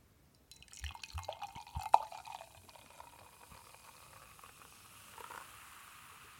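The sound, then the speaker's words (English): Beer from a large waxed-cap bottle, 11.5% ABV, pours into a glass with a gurgling splash that settles into a steady crackling fizz of bubbles, with no one speaking. “I wanted to get some crispy pouring audio here.”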